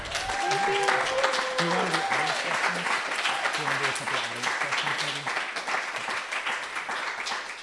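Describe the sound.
An audience applauds an author steadily for several seconds, a dense, loud wash of clapping, with a few voices calling out and cheering over it early on before the clapping carries on alone.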